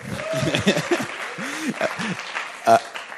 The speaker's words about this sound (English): We're having a clap